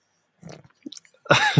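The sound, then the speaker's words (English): Wet mouth sounds of someone gulping beer, a few quick swallows followed by a louder, breathy release right at the end. “His beer's lovely, by the way. Good. Gulp.”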